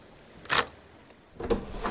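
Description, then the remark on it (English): A door is opened: a short scraping clunk, then a longer creak and rattle as it swings, with no voices. “Open the door.”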